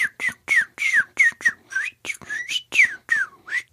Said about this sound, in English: Man, do you guys hear that fucking bird? Am I gonna have to go out there and yell at a fucking bird this soon into the god fucking